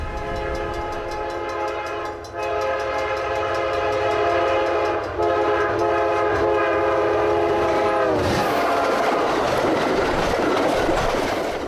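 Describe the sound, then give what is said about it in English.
A loud, sustained train horn blares for several seconds, then gives way to the rushing roar of a freight tanker train speeding past in agricultural land, with steady rumbling and rattling and no voices. “We're now out into more agricultural land, passing on one side yet another freight tanker train.”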